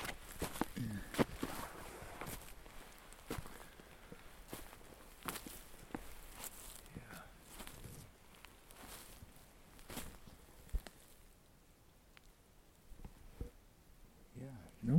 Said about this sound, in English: These footsteps are quite crunchy and loud.